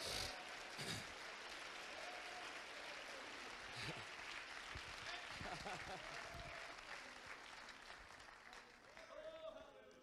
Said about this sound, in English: Oh, come on, clap your hands like you mean it.